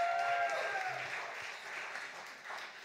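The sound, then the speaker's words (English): An audience claps for ABC weatherman Nate Byrne in a steady, dense burst of applause that stays fairly loud throughout, with a brief whistle-like tone near the start and no talking. “So round of applause for Nate being up past his bedtime.”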